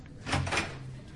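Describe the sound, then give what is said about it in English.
A door is opened and shut in one brief clatter lasting under half a second, with a low steady hum continuing underneath and no voices. “Just through that door there.”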